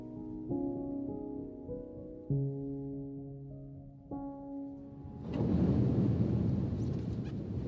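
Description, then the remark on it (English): A car drives through a deep puddle in pouring rain in the Lake District, on the way to Cockermouth: after several seconds of steady humming tones, a sudden loud, broad rushing splash of water starts and keeps surging until the end. “That was the noise of going through a torrential puddle.”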